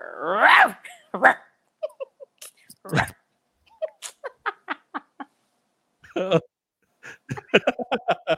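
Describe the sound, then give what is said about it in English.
A person imitates their own small dog's bark with a series of short, sharp yips and yaps in uneven bursts, loud, with a few breathy sounds and laughter-like bits in between. “Do your best imitation of your dog's bark or howl.”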